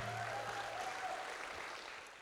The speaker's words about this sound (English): Well, good morning, Passion Life Church. Can we give the Lord the best round of applause that we're going to give Him all day?